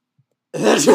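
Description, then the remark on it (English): After half a second of silence, one loud, deliberately exaggerated stage sneeze bursts out, a person faking the sound, breathy and abrupt, cut off at the end. “I didn't actually sneeze. That's what we call a stage sneeze.”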